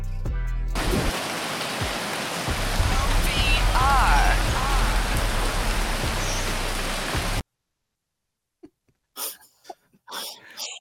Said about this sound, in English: This is the one that rains. Like, so listen to the sweet songs of the rain.